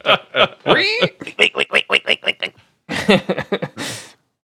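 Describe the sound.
A voice imitates a pig, letting out a rapid run of about a dozen loud grunting oinks, then, after a short pause, a second quicker burst of snorty squeals.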